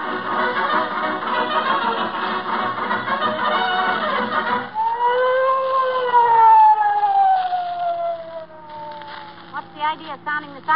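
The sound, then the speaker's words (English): A police car siren wails loud, its pitch sweeping up and slowly falling, preceded by a dense, buzzing blare of tones. “Sounding the siren, Officer Mahoney.”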